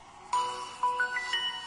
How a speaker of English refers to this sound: So you're going to hear a whole bunch of cell phone turny-onny noises. So I apologize, but there you go. That's my cell phone right there. Galaxy Note 2.